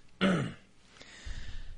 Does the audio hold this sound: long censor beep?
no